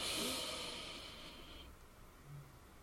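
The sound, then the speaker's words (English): A single deep, airy breath drawn in during a guided breathing exercise, loud at first and then trailing off into quiet near-silence over a couple of seconds. “Breathing in.”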